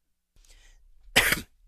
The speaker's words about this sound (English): Sorry, fighting off a cough.